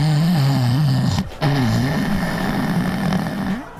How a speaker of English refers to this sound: That's me snoring.